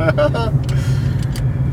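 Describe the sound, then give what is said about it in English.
A steady, low engine drone fills the inside of a car, constant throughout, with a brief voice speaking at the start and faint airy hiss above. “Special car cast.”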